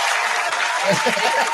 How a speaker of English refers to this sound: There you go. Got to give you an applause there, buddy.